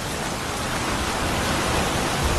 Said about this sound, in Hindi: ऊपर से बारिश और हवाएं उन्हें आगे बढ़ने से जैसे रोक सी रही थी।